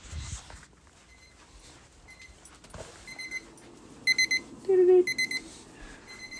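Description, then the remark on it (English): An oven timer beeps to signal that a frozen pizza is finished. It sounds in quick clusters of short, high electronic tones, repeating several times over a few seconds against a low background hum, fairly loud. “The frozen pizza's finished. Okay. You want the beeping noise?”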